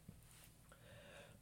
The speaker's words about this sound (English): So, as I'm clearing my throat again, I hate that.